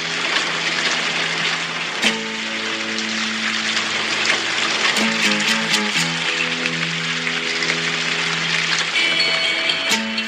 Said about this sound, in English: It starts with some rain. And some frogs. I think they recorded it, just a little backstory. I think they recorded it, like, at her Malibu house outside while it was raining.